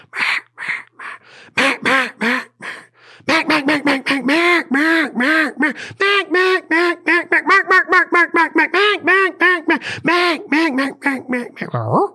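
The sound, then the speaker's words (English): Loud mallard quacking in long runs: a few drawn-out quacks, then a rapid, rhythmic string of raspy calls that speeds up and trails off, with no other voices. “I got mallard issues. I got Canada goose issues. I can hear them in my head right now.”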